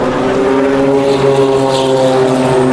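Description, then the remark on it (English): A Nissan race car engine roars loudly and continuously as the first of the Nissans passes by after the LMP2 cars, a steady buzzing drone with a rich, even pitch that holds for the whole moment. No voices are heard. “So all the LMP2 cars are passed, and here is the first of the Nissans.”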